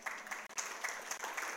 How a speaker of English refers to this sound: Yeah, so now you can clap. Woohoo!